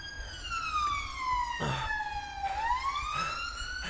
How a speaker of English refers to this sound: Blue flashing. Sirens on.